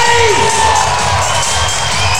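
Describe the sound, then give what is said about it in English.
The Adelaide crowd at an Adelaide 36ers basketball game against the Breakers cheers wildly during a late-game timeout, a loud, sustained roar of voices and shouts, with a couple of whistle-like tones gliding briefly over the din at the start. “Listen to this Adelaide crowd. Go nuts. They can feel a win.”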